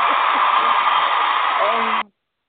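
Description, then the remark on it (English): A short, dense burst of crowd applause, loud and steady for about two seconds, then cut off abruptly, like a canned sound effect with no talking over it. “There's your round of applause.”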